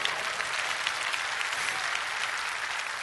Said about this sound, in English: If you're ready, give the Lord a clap offering.